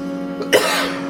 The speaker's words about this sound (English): I think he's coughing.